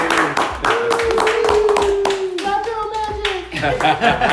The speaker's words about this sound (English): So let's give her the round of applause for coming. Yay! Yay!